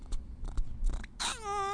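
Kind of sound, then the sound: animal, domestic cat meowing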